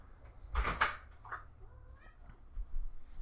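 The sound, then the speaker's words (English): A cat gives a couple of short, fairly quiet meows right after a brief clatter of a door being opened to let it back in. No one speaks. “Sorry, letting my cat back in.”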